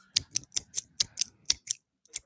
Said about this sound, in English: Scissors. No, nope. He's juggling scissors.